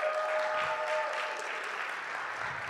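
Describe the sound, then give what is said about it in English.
An audience claps steadily together, a dense, even patter of many hands at moderate loudness, sustained throughout with no voices rising above it. “You give them one round of applause.”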